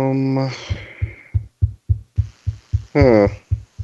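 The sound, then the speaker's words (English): A steady series of soft, low thumps of a finger tapping out a heartbeat rhythm, about a dozen in quick succession, with a brief voice sounding at the start and again near the end. “I hear your heart beating from the pressure. Oh, that wasn't my heart. That was my finger.”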